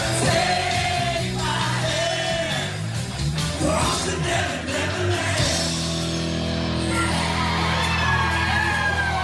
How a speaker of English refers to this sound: Now, he's probably handing the mic over to somebody because people were all singing all night long.